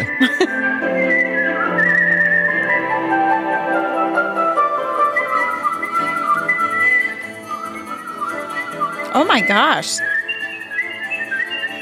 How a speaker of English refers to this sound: But here's the thing about competitive whistling is that you can actually get paid to do it, which is weird.